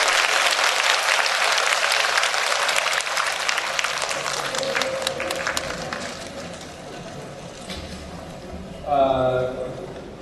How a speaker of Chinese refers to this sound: 让我们大家再次以热烈的掌声，感谢我们的索达吉堪布